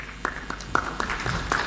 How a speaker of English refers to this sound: There's that warm round of applause